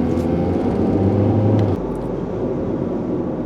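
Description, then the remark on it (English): Steady low engine rumble of cars idling at a traffic light, some of them hot rods, with a deeper tone that drops off partway through as one vehicle shifts or pulls away; no voices. “Everyone around me has a really nice car, like a hot rod.”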